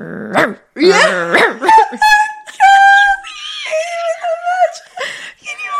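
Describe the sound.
A man imitates a dog, with a quick series of loud barks and growls that give way to drawn-out, whiny whimpering tones.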